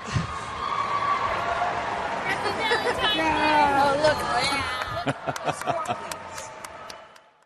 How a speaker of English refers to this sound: The crowd in Korea went wild. Oohs, ahs.